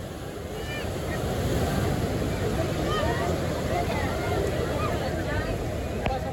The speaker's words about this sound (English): The voices of the crowd settled down, and all that was heard were the waves crashing into the beach.